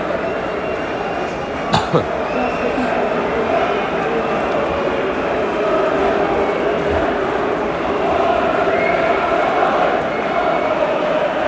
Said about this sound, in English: There's some fans in the Stretford end sort of singing, but there's also audible boos as well.